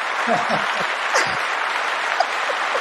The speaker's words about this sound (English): Appreciation for the clapping, man. I like it.